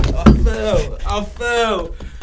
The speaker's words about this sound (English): I fell on the podcast. Yo, I fell. The chair broke. Yo, what the hell?